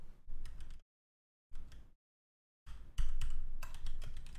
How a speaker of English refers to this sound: Stupid wireless keyboards.